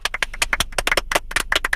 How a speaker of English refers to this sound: We need a clap track.